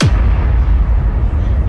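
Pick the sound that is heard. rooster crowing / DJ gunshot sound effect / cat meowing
DJ gunshot sound effect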